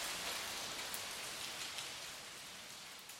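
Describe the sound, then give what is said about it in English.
Steady rain falls over a city, a continuous soft hiss with occasional sharper drops tapping nearby surfaces, fairly quiet and even throughout, with no voices. “You're listening to Rain in the City.”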